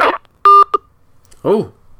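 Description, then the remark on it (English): A steady electronic phone tone sounds for a fraction of a second, followed by a brief second blip, clear, with a voice heard briefly before and after. “Oh, we have a phone.”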